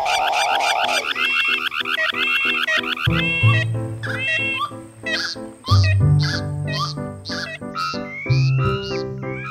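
Several car alarms layered together in a sound piece by artist Nina Kachadorian: warbling sirens, rapid repeating chirps and bright electronic tones overlapping loudly, with a low buzzing drone joining after a few seconds. No one speaks.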